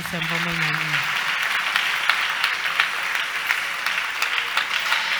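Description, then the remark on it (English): A crowd claps for God steadily and densely for about five seconds, a bright sustained patter of many hands, with a single voice calling out briefly over the first second. “Clap for God.”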